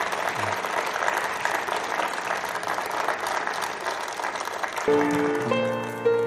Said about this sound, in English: So please welcome Truth for Living class with One Selection as they come at this time. But you haven't given them a round of applause. Yes.